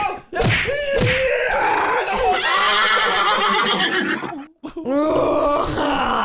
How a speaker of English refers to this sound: Whoa, it sounds like the horse is kicking the shit out of you